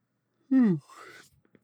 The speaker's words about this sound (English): I could never be a morning radio host just for the yawning factor. You know, I'm such a big yawner. I yawn all the time. I'd have to teach myself not to yawn anymore.